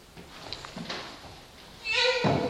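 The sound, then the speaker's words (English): A door swings with a long, squeaky hinge creak followed by a dull low thump as it shuts, as someone comes in, over a faint murmur of background noise. “Somebody's coming in the door there.”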